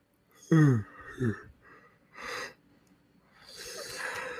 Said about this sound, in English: That's not me yawning. That's just my soul trying to escape.